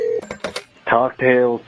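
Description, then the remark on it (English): A telephone rings in two loud, buzzy bursts separated by a short gap, preceded by a few quick clicks and beeps. “Oh, it's ringing.”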